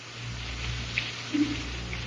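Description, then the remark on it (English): Rain falls steadily as a soft, continuous hiss, even and unbroken, with a low hum underneath and a couple of faint patters standing out. No one speaks. “Father, is it raining where you are?”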